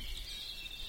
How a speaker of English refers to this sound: There's a blackbird singing and a grey warbler.